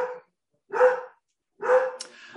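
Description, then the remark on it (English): A dog barks three times in quick succession as the postman arrives with an Amazon delivery, each bark loud, with short silent gaps between and no voices. “Sorry, the dog's barking.”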